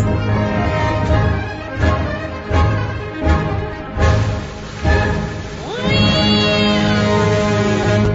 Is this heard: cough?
no